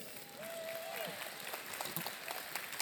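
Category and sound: crowd, audience clapping hands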